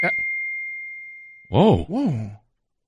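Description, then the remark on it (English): A single bright chime ding rings out and slowly fades over about a second and a half, followed immediately by a person's short, surprised exclamations. “Is that your phone?”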